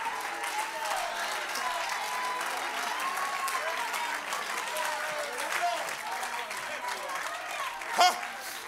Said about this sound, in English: Somebody clap your hands unto the Lord. Magnify him in this house.